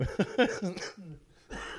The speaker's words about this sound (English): Yeah, I'm just getting over a fucking cold. I'm stuffed and I have a wicked cough. Sorry.